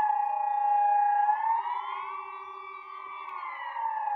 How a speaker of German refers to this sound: Leute, ich mach mal kurz Fenster auf. Zieht's euch rein. Digga, ist das nicht krank? Das ist schon irgendwie... Schon irgendwie beängstigend so. Stell euch mal vor, so, es ist Krieg, dann hört ihr einfach die Sirene.